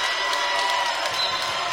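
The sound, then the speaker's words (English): A large arena crowd at a basketball game roars steadily, a dense wash of cheering and clapping with no break, loud and sustained throughout. “Listen to the crowd.”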